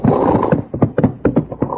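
Horse hooves clop in a steady, slowing rhythm over a rumbling background, each hoofbeat a distinct knock as the horses are pulled up to a halt.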